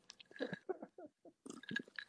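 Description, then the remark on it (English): Wet mouth noises of someone sipping tequila from a glass: a cluster of slurps and smacks, a short pause, then another burst of sipping and swallowing. “Now, as I sip on my tequila”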